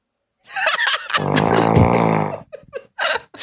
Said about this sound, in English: No, I like the snoring. I think it. It's good, yeah, it's good atmosphere. This way, it's good we atmosphere.